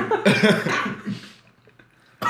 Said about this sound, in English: I'm not going to lie. I was trying to be on some dickhead shit and be like, gulping in the mic, but...